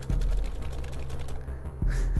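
Rapid, uneven clatter of keys being mashed on a computer keyboard to hack a computer, a dense run of light clicks over a steady low droning background.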